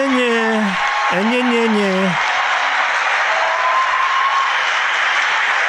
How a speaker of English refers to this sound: Listen to them cheer.